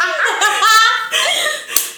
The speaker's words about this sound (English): I'm just kidding, people. I just clapped my hands.